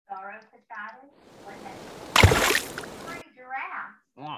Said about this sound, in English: They open the door, letting a massive amount of water into the house.